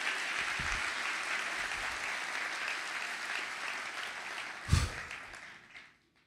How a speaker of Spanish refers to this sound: ¿Cuántos lo creen? Aplauda al Señor del tamaño de tu esperanza.